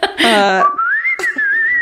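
A short vocal sound gives way to a single sustained whistle that slides gently upward in pitch and holds, clear, for about a second.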